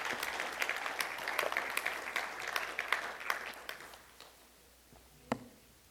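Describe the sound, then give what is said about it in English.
A round of applause from a church audience, a dense flurry of claps that gradually thins out and fades, ending with a few scattered claps and one sharp final clap. “Give them a round of applause, and thank you.”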